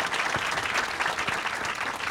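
Steady audience applause welcoming a panel of journalists, a dense wash of many hands clapping at an even loudness throughout, with no voices standing out above it.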